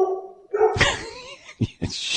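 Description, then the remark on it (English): A dog at home that is chewing the lights on a fake tree barks in a few short, sharp bursts, with a longer bark followed by two quick ones, fairly loud, no talking over it. “The dog is eating my wife's Martha Stewart tree.”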